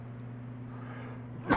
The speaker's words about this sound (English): I'm sorry, I may be coughing a few times. I am coming off the crud that my family's been passing back and forth for a couple months.